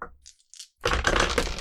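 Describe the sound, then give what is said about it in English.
A few light, scattered clicks, then a loud burst of dense clattering as four dice tumble and rattle across a hard tabletop for an empathy roll in a game. “Where'd my fourth dice go?”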